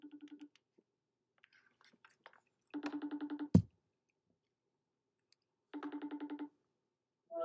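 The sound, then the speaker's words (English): A phone rings out during an outgoing call in short, buzzy trilling bursts that repeat every few seconds with silence between, plus a sharp click after the second ring. Nobody speaks. “Oh my gosh, freaking pick up the phone. Okay, we're gonna call him just from my phone.”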